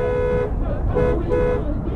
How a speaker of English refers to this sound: You're probably frustrated as hell at this point, blowing your horn, until you realize you're the only one that's tripping.